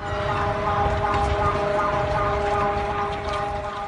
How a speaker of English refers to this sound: That's from a video posted to the Alerta Chiapas Twitter account. The seismic alert blared before shaking began, and it warned citizens to take cover, earthquake on the way.